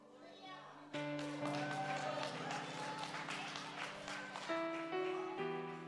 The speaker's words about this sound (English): You're clapping.